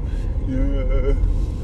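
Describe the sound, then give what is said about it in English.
A steady low rumble fills the cabin of a moving car being driven to school, constant and fairly loud, with a brief voiced murmur rising over it midway before fading. “In the car now.”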